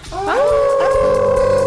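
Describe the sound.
Several human voices howl together like dogs, a loud sustained group howl that rises in pitch and then holds steady, continuous for under two seconds. They are howling at the moon dog on a count of three during Thanksgiving week on the Moondog Show.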